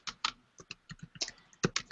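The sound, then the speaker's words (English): Rapid, uneven clatter of keys on a computer keyboard, a dozen or so sharp clicks in quick bursts, clear with no voices over it. “Who is typing?”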